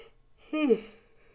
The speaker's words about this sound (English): I don't know why. I don't know why I yawn when I'm on this.